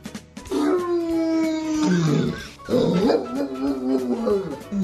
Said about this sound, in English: Dog in the alley, huh?